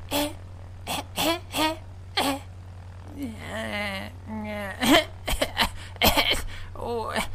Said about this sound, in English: The silence was broken, however, when Bruff began hearing soft whimpering and coughing from over his shoulder.